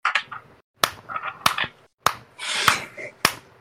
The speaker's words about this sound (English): Why are we applauding? Why are we doing a slow clap? Don't make it weird.